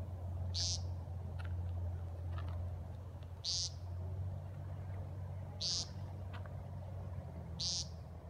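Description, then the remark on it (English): A woodcock calls four times, each a sharp, high, squeaky note spaced about two seconds apart, over a steady low rumble and soft background noise. “So let's have a little listen to the call of the woodcock.”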